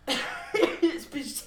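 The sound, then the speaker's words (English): A short fit of coughing, not from COVID: a harsh opening burst followed by three or four quicker, throaty coughs in an uneven rhythm, fairly loud. “Y'all don't come for me in the comments about coughing and shit.”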